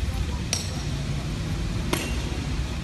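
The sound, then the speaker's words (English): Two sharp, ringing strikes land about a second and a half apart as someone smashes a Hollywood star set in the sidewalk, over a steady low outdoor rumble. “Just tearing up his Hollywood star.”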